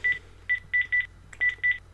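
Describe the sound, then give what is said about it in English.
A quick series of six short electronic keypad tones, each a bright dual-pitched beep, tapped out in an uneven rhythm as a number is dialed again on an iPhone, clear with no talking. “I'm going to dial it again, and this time I'm going to show you what other functions you've got actually on the watch face when a phone call comes in.”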